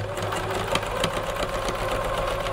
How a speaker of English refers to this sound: Sewing machine? Correct. Well done. Was that what you were going to say? It was, yes. Wow. I thought it was a money counter.